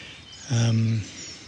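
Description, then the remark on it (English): A single bird call rings out in a field in the morning, one drawn-out, harsh, steady-pitched cry lasting about half a second, loud against a faint background hiss. “Various things calling and crying, and I'm trying to think about what the birds are doing.”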